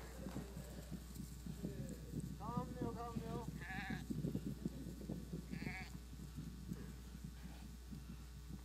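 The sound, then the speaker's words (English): Several sheep bleat in short, wavering calls over a busy patter of many hooves as a flock comes running toward the person calling them, with a steady low hum running underneath. “My sheep hear my voice, and they come running to me.”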